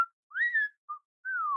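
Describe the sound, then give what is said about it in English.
A woman whistles clearly in a short three-part call: a rising, swelling note, a quick brief chirp, then a long falling tone, loud with no talking. “And as she went, she made a whistle.”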